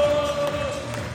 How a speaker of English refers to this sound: Thomas Frank's just coming walking, you can hear it. They're singing. Mbeumo, she's giving a shirt away. The crowd is going mad. People are on the, they're standing up on the railings. People are crowd surfing, there's everything. It's gone bonkers.